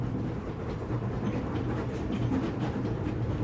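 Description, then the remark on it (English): A train bound for the North Pole rumbles steadily along the tracks, a continuous low roar with faint rhythmic clatter from the wheels, with no voices. “Go get settled on the train.”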